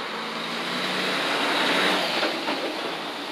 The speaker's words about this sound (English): Hold up, that's a big truck going to go past me, so I'm going to try not to say nothing real quick.